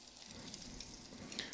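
A soft, steady sizzle of floured meat searing in a hot crock, a continuous hiss dotted with faint crackles and pops, with no talking.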